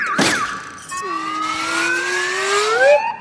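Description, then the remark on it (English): In a movie trailer, a car alarm wails with a steady, slowly rising electronic tone, loud, right after a sharp crash at the very start as a man smashes cars with a hammer. Nobody speaks. “He's vandalizing the cars as they go off.”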